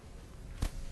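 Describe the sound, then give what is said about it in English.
A door shuts with a single short, dull thud over steady room noise. The impact is moderately loud, and no one speaks. “Maybe someone would be able to close the door.”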